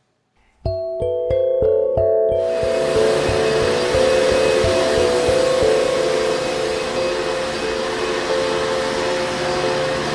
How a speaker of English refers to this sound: We'll play some vacuum cleaner noise underneath it.